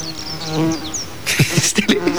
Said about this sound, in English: it's still buzzing around. Get off! Go away! Leave me alone!